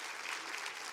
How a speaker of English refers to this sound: Good morning. Come on now. Clap for yourself. Clap for the church. Clap for Jesus. Come on. It's a good day.